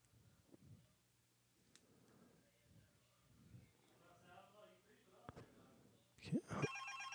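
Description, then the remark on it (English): A telephone rings loudly near the end of an outgoing call, a bright tonal burst that follows several seconds of quiet, muffled background murmur and soft clicks. “And I think I can get him on the phone again if I don't have an ad right away. Let's see if I get him.”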